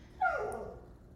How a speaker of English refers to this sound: Dobby wanted to chime in on that one. It's okay, puppy. We're almost done.